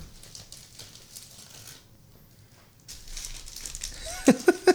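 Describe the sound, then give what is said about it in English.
A plastic bag of cookies crinkles and rustles as it is opened, the crackling building up and ending in a few sharp, loud crunches. “That's his muscle screaming as he opens the bag of cookies.”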